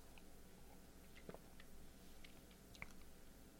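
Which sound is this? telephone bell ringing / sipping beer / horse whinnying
sipping beer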